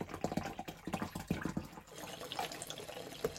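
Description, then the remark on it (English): A woman fills a water bottle from a tap, a steady splashing rush with gurgling bursts that shift in pitch as the bottle fills, with some faint background noise. “She's filling up the water, guys.”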